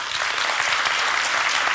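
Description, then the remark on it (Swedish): An audience claps steadily, a dense wash of many hands with no gaps, fairly loud and even from start to finish with no voices on top. “Ska vi bara, för hur många har sett det här Grotesco avsnittet applådera.”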